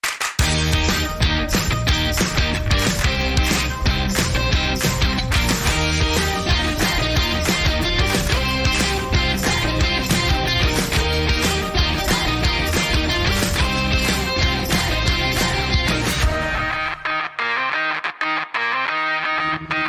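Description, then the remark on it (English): A loud, dense burst of distorted, driving jingle music with steady rhythmic hits plays for about seventeen seconds, then drops away into a quieter, sparse tail. “Play the jingle.”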